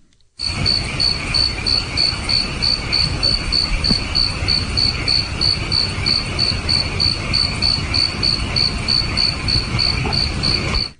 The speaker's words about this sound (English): Crickets.